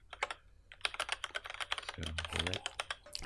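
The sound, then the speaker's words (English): Rapid computer keyboard typing clacks during a Skype call, picked up by the microphone: a dense irregular run of sharp keystrokes, with a brief low murmur of a voice underneath midway through. “Gotta love that Skype keyboard podcast. Clacks.”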